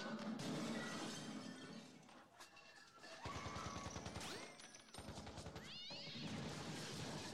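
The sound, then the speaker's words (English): A cat yowls loudly a couple of times, its cries rising and falling, amid a chaotic burst of crashing and shattering clatter. “What the cat doing?”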